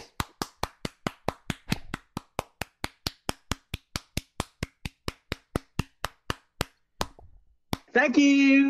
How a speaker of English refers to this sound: It's kind of like Johnny Carson when they put the clap machine on and then he comes and then the guy comes down.